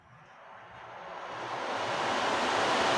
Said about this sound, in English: And so what I'd like to do is just take a couple of minutes and to just play it gently and allow everyone to just kind of really focus in on meditating with the drum.